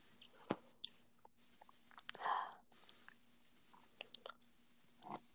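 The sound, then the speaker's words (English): Wet chewing of gum with irregular smacks and sticky clicks, a louder squelch in the middle, and no talking. “Yeah, like, you probably just hear me, like, chewing on my gum.”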